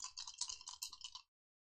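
Dice clatter and rattle across a hard tabletop in a quick burst of small clicking impacts lasting about a second, then stop abruptly into silence. Fairly quiet, with no voices.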